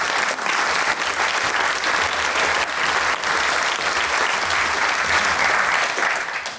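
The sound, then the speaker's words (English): An audience claps steadily and loudly for several seconds, a dense, continuous wash of many hands with no pauses and no voices standing out. “Yeah, you should clap”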